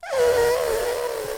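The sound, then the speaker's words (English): A person imitates an elephant's trumpet with a single sustained, brassy, nasal call that starts with a brief rise, then holds a steady, loud, buzzy tone for over a second. “Yes. That's my elephant.”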